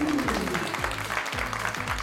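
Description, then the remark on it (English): A crowd applauds steadily for a couple of seconds to welcome the mantis shrimp as special guest on the Sea Creature Feature segment, a dense wash of many hands clapping at once, with some lower tonal sounds and voices mixed underneath. “Everyone, clap your fins together for our special guest, the mantis shrimp.”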